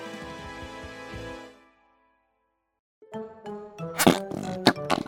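Wet, rubbery squelching noises like fart putty being squeezed, starting with a long drawn-out squelch, then after a short pause a quick run of louder, sputtering squishes.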